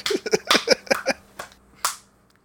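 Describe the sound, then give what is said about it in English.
A quick burst of sharp hand claps, fairly loud, uneven in rhythm, trailing off into a couple of sparse final claps before silence. “If we all just clap your hands and believe.”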